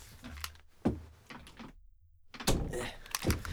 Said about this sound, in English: To close my door.